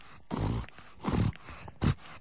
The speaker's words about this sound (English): I can't help it. You're holding a pug that is snorting into the microphone.